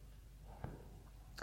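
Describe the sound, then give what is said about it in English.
Quiet chewing with two soft, wet mouth smacks, one midway and another near the end, over a faint low background hum. No one speaks. “Eating, chewing.”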